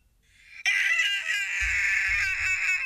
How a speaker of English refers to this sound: It's a man screaming, which is hopefully Harvey screaming because he is so canceled.